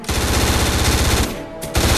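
Loud automatic gunfire rattles off in a rapid, steady stream of shots, easing briefly in a short lull before the burst picks up again. No voices are heard.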